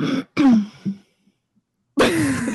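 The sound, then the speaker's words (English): A person clears their throat a few times, short raspy bursts separated by a brief silence, with another harsh throaty rasp following after the pause. “I had to clear my throat.”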